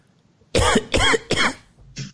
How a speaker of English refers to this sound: Oh, you know what? This is the cough button that makes me cough.